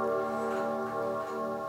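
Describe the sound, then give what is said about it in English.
A grandfather clock chime rings out in sustained, resonant bell tones that hum steadily and evenly at moderate volume, with no voices present. “The chime on the grandfather clock signaled it had been 2 hours since I got there.”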